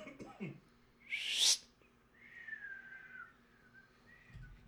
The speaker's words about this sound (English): and above, a ranger with a reed whistle in his mouth.